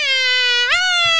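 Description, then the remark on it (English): A voice imitates a siren with a loud, steady, buzzy wail that suddenly swoops up to a higher pitch and holds there, with no talking. “No, not the siren.”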